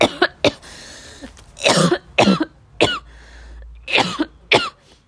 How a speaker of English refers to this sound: Like, I'm coughing right now because this bong's got a little bit of build up on the side, so it's a bit harsh, but it's fine really.